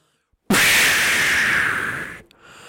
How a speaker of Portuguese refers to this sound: Bombinha de fumo.